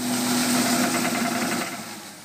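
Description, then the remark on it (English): The engine of a big almond tree shaker machine, used to shake almond trees, runs steadily. It is a loud continuous mechanical drone with a low hum and a faint high whine, rattling slightly throughout and easing off a little at the end. “Almonds just need these big machines that shake the trees.”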